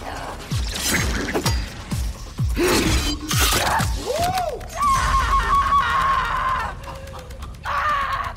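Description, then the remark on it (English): A voice imitates a horror-movie scream with a run of strained, gasping shrieks and swooping cries, then a long, wavering high wail. It is loud, with no other talk. “She just has, like, the most incredible scream of any person.”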